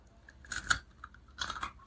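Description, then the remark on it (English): A crisp crunchy bite into warm baked bread followed by a few moist chewing crunches, with short bursts of crackle separated by quieter pauses and no talking. “Good crunch, good crumb.”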